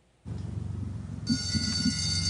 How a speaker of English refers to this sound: The afternoon recess bell rings at Brampton's Our Lady of Peace Elementary School, but none of the kids come out for fresh air.